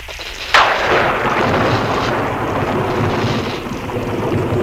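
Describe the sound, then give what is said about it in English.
A sudden loud crack of thunder breaks out, then rolls on as a heavy, sustained, powerful rumble, with no voices present. “I'm sorry. I didn't hear. The thunder.”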